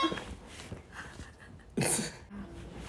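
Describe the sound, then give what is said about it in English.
A doorbell buzzer sounds once: a short, loud, harsh buzz lasting about a third of a second, standing out sharply against quiet background rustle and faint breathing. “We were interrupted by a buzzer. Kind. The doorbell kind.”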